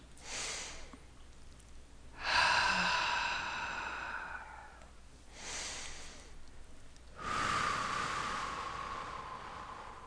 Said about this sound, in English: All right, let's do a little breathing exercise here, taking some nice deep breaths.